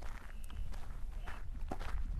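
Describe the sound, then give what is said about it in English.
Footsteps walking along at a steady, unhurried pace, a series of soft crunching steps over a low rumbling background, with no talking. “I think she'll probably have the answer, so let's head on over that way.”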